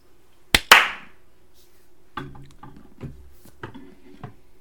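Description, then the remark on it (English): A sharp, loud hand clap on the count of four near the start, a quick double snap with a brief ring, followed by a stretch of low, indistinct voices talking. “All right, so we're clapping on four.”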